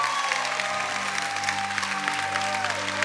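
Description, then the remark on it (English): An audience claps their hands together in worship of the Lord, a dense, steady burst of applause, with a sustained low musical drone and a high tone running underneath. “You're activating your spirit as you clap your hands.”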